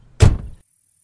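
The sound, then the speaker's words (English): A car door slams shut once with a heavy thunk that fades quickly, in swampland, leaving near silence; no voices are heard. “Let's get out of the car.”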